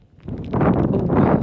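Wind ahead of a thunderstorm moving across distant hills, rising from near-quiet into a steady, broad rushing roar that stays loud, with gusty surges and a rough, buffeting texture across the whole clip.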